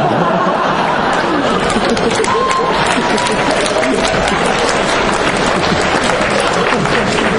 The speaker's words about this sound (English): There's the applause I've been waiting for. For wishing a fellow performer would burn to death.